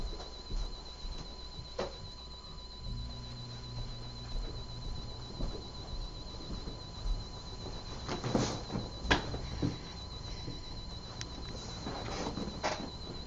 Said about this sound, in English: Now I don't have crickets. That's just that's my little CD player.